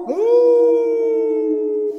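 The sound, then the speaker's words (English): A single long wolf howl sound effect rises quickly then holds a steady, sustained pitch for about two seconds, loud, with no talking over it. “Go ahead and howl it up”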